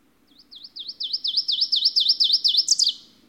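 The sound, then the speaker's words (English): A recorded bird song from the Macaulay Library at the Cornell Lab of Ornithology: a rapid series of about a dozen high, sweet, repeated notes that quicken and brighten, ending in a short flourish, clear with faint low background hum. “Bird vocalizations courtesy of the Macaulay Library at the Cornell Lab of Ornithology.”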